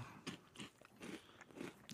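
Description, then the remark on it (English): Crunchy chewing on a South Korean corn chip snack, somewhere between crunchy and puffy: a steady run of about six crisp, crackling bites, each a short burst of brittle crunch repeating roughly every third of a second, moderately loud with no talking. “There's like somewhere in between crunchy and puffy.”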